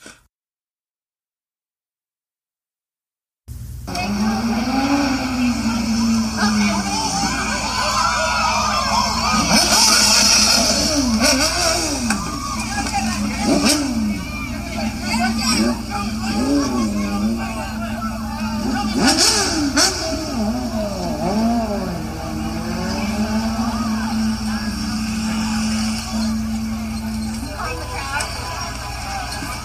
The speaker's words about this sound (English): Now that clip, you can hear the bike revving up. It's what looks like a crotch rocket, probably a katana or something like that. Kawasaki, Honda, always a Honda.